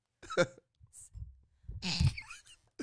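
A close-up sneeze bursts out sharply after a brief catch of breath, preceded by a shorter huff earlier on, all fairly quiet with no talking around it.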